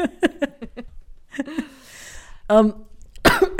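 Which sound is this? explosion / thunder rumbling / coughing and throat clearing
coughing and throat clearing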